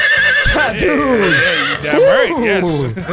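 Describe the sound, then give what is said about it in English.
A person vocally imitates a horse's whinny, a loud, quavering, pitch-wobbling neigh lasting a few seconds, with no other sounds around it. “And man, if I walk by and a horse goes...”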